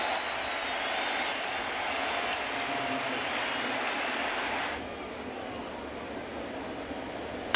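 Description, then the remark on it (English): A large stadium crowd at a baseball game stands and applauds Pineda in a sustained ovation, a dense, steady roar of clapping that holds loud for several seconds, then continues somewhat softer and duller. “And the crowd stands to give an ovation to Pineda.”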